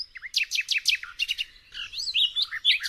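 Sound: birds chirping and singing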